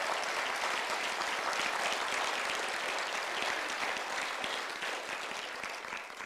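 A crowd applauds the staff team steadily, a dense wash of many hands clapping at once, loud and sustained for several seconds before easing off slightly at the end.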